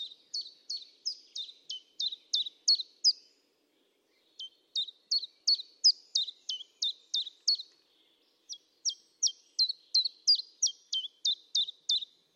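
Birdsong in three bursts of rapid, high-pitched repeated chirps, each phrase a quick series of sharp notes separated by brief pauses, clear with no other sounds.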